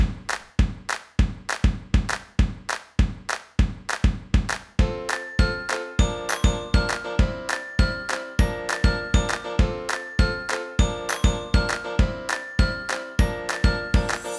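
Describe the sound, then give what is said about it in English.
A passing train clatters by in a steady, rapid rhythm of wheel clacks; partway through, a bright, repeated ringing tone joins in over the beat. No one speaks. “This is, of course, the sound of a passing train.”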